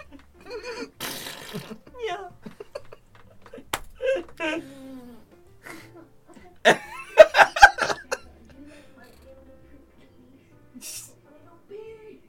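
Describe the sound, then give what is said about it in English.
A string of buzzy, squeaky Japanese farts in short irregular bursts, some long and drawn out, with a loud cluster near the end, mixed with laughter and voices reacting. “Dude, I've never heard farts like this in real life.”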